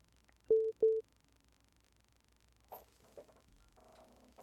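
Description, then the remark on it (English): Two short, identical electronic beeps sound in quick succession, a clear steady phone-call alert tone, followed by quiet background noise and faint, muffled voice sounds. “Getting a phone call. I don't know if you heard the beep.”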